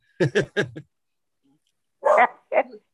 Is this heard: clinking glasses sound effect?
no